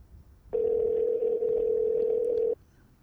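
A single steady electronic ringback tone from an outgoing call placed on a phone to the caller's mother, a flat hum lasting about two seconds before cutting off, heard clearly with no talking.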